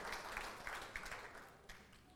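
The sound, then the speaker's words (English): Soft applause from a small crowd for the volunteers, a steady patter of many hands with a few sharper claps breaking through, kept faint throughout. “Can we give a round of applause for our awesome volunteers?”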